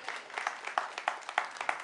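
A crowd claps steadily, many hands blending into a dense wash of applause with a few sharper, louder claps standing out roughly every third of a second.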